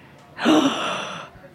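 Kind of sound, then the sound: crowd, audience gasping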